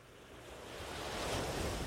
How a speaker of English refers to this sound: Enjoy the sounds that the waves make as they wash into the shoreline.